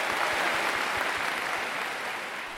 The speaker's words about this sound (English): Are we going to – should we enter, like, claps? Yay!